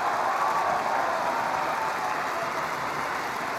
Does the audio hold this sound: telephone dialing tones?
no